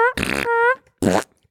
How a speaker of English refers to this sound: And then the pedestrian's like, Did I? And then the last thing they heard before they died is a fucking fart sound.